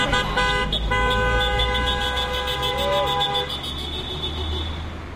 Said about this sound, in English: Drivers honked and called out in support for the teachers standing with signs by Christchurch's intersection near Hagley Park.